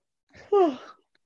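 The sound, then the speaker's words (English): A single breathy yawn: a soft intake of air swells into a voiced, downward-sliding groan that trails off after about half a second, with no talking. “Oh my gosh, I'm gonna yawn.”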